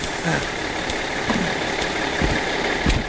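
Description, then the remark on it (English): A large bus engine idles at a stop in the rain with a steady, low rumble, a few dull knocks and thumps breaking through the continuous drone. “Stop the bus. I'm here.”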